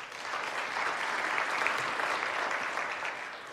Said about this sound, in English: Now, will you clap if you have purchased or received any of these gifts?